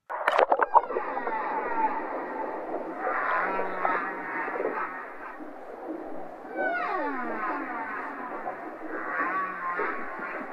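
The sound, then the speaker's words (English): A humpback whale's creaking-door call: a continuous stretch of groaning, creaky tones with rising and falling sweeps, fairly loud and steady for about ten seconds, with no talking. “For example, the humpback whale has a number of different sounds they make. One of them is the creaking door, which goes.”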